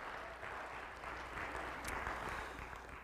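An audience claps in a steady round of applause for the speaker's mother and wife on their birthdays, a dense crackling wash of many hands that holds at an even level for about three seconds, with no voices over it.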